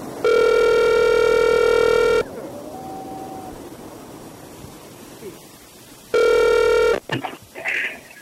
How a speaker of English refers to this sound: Is the phone ringing at the house?